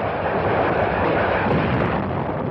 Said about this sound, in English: On 15 September, dawn broke off the island of Wolmi. Guns of the 262-ship United Nations Armada began their point-blank preliminary bombardment.